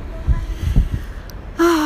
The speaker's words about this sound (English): I'm breathing fresh air from the Pacific Ocean. I'm at the corner of my world that I can go to when I need fresh air.